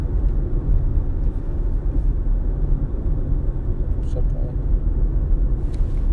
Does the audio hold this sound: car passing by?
yes